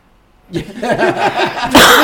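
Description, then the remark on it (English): A cat coughs in a run of raspy, wheezing hacks in quick succession, fairly loud, ending in a harsher noisy burst like a final forceful cough. “And so a lot of these 8 to 12-year-old cats come in coughing, and you'll hear it.”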